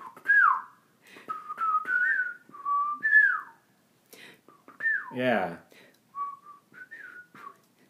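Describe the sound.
A person whistles the bouncy, melodic Ed, Edd n Eddy cartoon theme tune in a string of short, gliding notes, pausing briefly midway as a voice says a single word before the whistling resumes.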